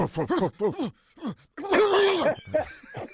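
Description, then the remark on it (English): A man imitates a dog with a run of short, yelping vocal barks, then a longer drawn-out howling bark and a few trailing yips, all voiced rather than a real animal. “I need you to give us some confidence and give us that dog barking.”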